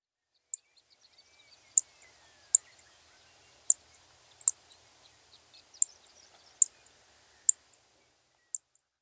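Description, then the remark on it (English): Clay-colored sparrow call notes: short, sharp, high-pitched chips repeated about nine times at slightly irregular intervals, clear against a quiet background, with no voices. “And a call note of the clay-colored sparrow, another sparrow in this genus.”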